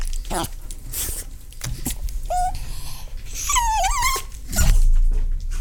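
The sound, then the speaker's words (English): A male dog named Chewy squeals and whimpers in high, wavering cries that rise and fall, with short bursts and a longer drawn-out whine near the end, some background noise underneath. “Dogs don't squeal like that just for no reason.”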